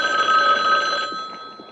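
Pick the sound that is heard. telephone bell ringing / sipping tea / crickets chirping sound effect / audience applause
telephone bell ringing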